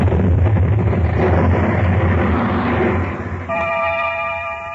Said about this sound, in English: An investigation into the cause of the explosion was conducted. And after a very thorough inquiry, the official in charge issued a rather startling statement. There can be no question as to what caused the explosion.